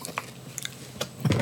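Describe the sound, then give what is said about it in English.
Crunching as someone chews a hard, crunchy snack, with several sharp brittle cracks spread across the moment and a louder wet chomp near the end, no talking. “That's not a good crunch. I don't know what I'm crunching on.”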